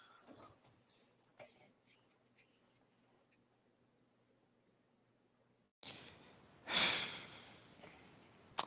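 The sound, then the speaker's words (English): A sharp, loud intake of breath, a person gasping for air after a stretch of quiet rustling and faint background noise, trailing into heavy breathing. “I kind of want to pick an upset here, and that's why I'm kind of gasping for air, because I feel like it would be just a perfect game for an upset.”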